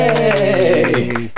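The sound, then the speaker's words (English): Quick, steady claps from several people over a drawn-out, high-pitched cheering voice, lasting just over a second before tapering off. “All, like, clap? Yay!”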